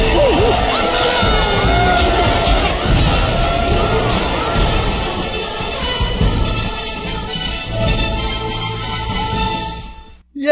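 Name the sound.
crowd cheering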